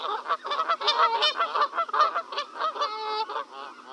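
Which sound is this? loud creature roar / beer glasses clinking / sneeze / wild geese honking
wild geese honking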